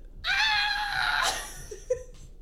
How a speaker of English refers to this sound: I'm just screaming into a pillow because I read that it's better than saying mean things.